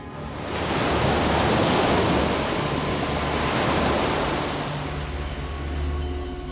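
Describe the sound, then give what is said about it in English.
A single ocean wave rushes in with a broad, hissing swell, holds as a steady wash of surf, then slowly eases back, fairly loud with no voices. “A wave sped toward Achilles, and when it flowed back out to sea, he saw that a pair of blood-red dice had washed up on the shore.”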